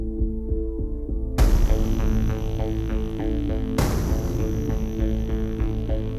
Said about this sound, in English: They've even got the bit crushing on like the reverb tail of those drums. Beautiful clean strings over the top of just dirty synths.